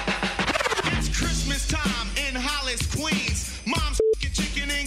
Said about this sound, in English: That was quick. I'm going to play for you one more time. The beep was really quick.